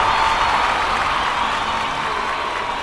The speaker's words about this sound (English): Marcus took a long drink as the crowd roared again.